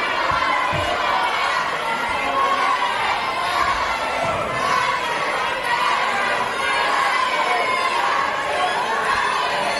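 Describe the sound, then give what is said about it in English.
A loud, steady roar of crowd noise fills the legislative chamber, with many voices shouting and chattering at once and swells of cheering rising and falling throughout, no single voice standing out. “Here is a little bit of sound from inside the chamber.”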